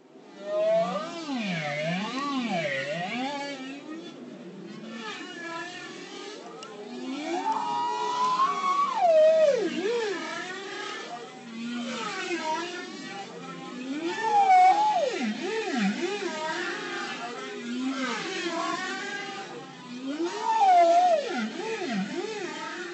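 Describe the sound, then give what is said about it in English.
Long, sliding tonal moans and whoops of an Arctic whale's song rise and fall in pitch, overlapping in slow, continuous phrases, fairly loud and sustained with no voices. “And they sing these amazing, amazing songs.”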